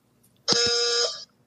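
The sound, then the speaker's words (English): A single quiz-game contestant buzzer blast, sounded as a buzzer test before the game, steady and reedy like a thin car horn, holding for about three-quarters of a second and then cutting off, with quiet on either side. “My wife says I have a wimpy car horn, and that is exactly what it sounds like.”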